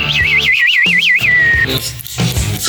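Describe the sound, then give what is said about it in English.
A person whistles a warbling, trilling birdsong imitation: a high wavering tone rising and falling in quick loops for about a second and a half, then fading out amid low background noise. “What's the most useless talent you have? Whistle? A bird?”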